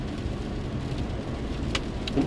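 Steady rain patters on a car windshield, a dense, continuous hiss with a few sharper drops standing out over a low interior rumble, fairly loud, with no voices.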